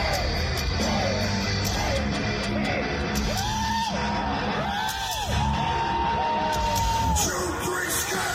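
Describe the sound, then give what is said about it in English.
A big concert crowd cheers and yells continuously as the show opens with a curtain drop, with loud sustained whoops and shouts rising over a dense roar of voices, slightly washy and phasey, recorded on a phone. “Everybody cheering.”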